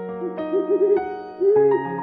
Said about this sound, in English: Hey, it's Polly, our owl. She's flying in with the fun facts.